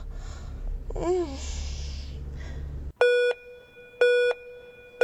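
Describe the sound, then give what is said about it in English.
Three loud electronic beeps, each a short steady tone, sound about a second apart, marking the start and stop of each entrant in a contest, following a stretch of murmuring background noise and a brief faint voice. “The beeping indicates the beginning and stop of each entrant.”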